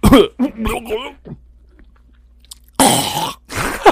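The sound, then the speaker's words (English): A person imitates a harsh, retching cough, then goes quiet before a loud, wet gulping and gagging burst, like someone swallowing vomit back down, forceful. “He, from time to time, would cough so vigorously that he would throw up in his own mouth and swallow it.”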